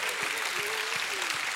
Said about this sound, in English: If you'd like to see that happen, give God a hand clap of praise, then do something about it.